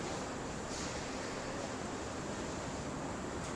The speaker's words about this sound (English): Do you feel how in this room right now, I'm talking to you folks on Zoom, in this room right now we can hear the wind in the background, I don't know that you can, but it's really windy today in Minneapolis.